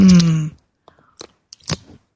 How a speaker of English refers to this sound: For all my friends who love to sip our tea or spiritual espresso together, this sip is for you.